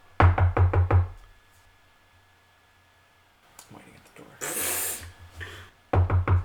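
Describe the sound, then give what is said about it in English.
Two quick bursts of loud knocking on a wooden house door, about five raps at first and four more at the end, separated by a quiet pause and a brief scraping, rustling noise. “Okay, and she comes and she answers the door.”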